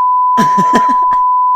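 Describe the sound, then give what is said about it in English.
A steady, loud censor bleep holds one pitch for about a second and a half, covering a voice that is still faintly audible underneath before the tone cuts off. “Like, I don't know if we can keep that in, but we might have to beep it, but okay.”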